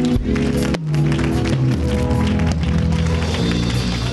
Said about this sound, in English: Clap your hands.